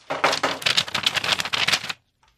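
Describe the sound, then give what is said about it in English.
A rapid flurry of hands banging on a desk, dense clattering knocks running for about two seconds before stopping abruptly. No one speaks. “You gotta bang your desk harder though.”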